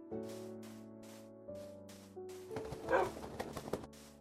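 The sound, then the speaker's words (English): A dog gives a few short barks in the latter half, preceded by steady sustained humming tones that continue faintly underneath. “A woof.”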